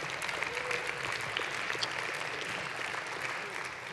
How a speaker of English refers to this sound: Come on, get on your feet and let's give the Lord a clap offering. Would you do that? Praise the Lord.